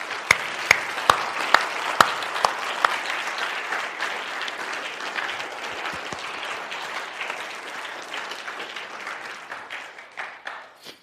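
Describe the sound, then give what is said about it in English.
A church audience at Bridges breaks into steady applause of thanks as a staff is presented as a symbol of shepherding ministry, a dense, even wash of many hands clapping for about ten seconds, with a few sharp individual claps at the start before it gradually thins. “So as we as Bridges present this staff to you as a symbol of the ministry of shepherding that God is calling to you, we just want to express our appreciation to you, I think it's okay if we even clap and say thank you for.”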